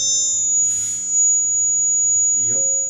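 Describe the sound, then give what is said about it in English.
A sustained, piercing feedback tone rings through the room speakers, holding steady for about three seconds over a low electrical hum, with a brief muffled rustle near the end. It is caused by the speakers being left on in the room. “That was because, once again, I've had the speakers on in the room and there was reverb.”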